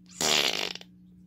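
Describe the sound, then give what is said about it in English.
A short, loud blown raspberry, a mouth-made fart noise that buzzes for about half a second and then sputters out in a few quick flutters, with no talking. “did you fart? It was just my mouth.”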